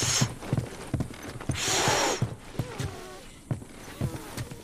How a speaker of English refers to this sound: And I will say, you will hear a bit of noise. That's just me as Joel going around collecting my half pair of scissors and all that. But yeah, here is Ellie trying to whistle and failing and then successfully whistling.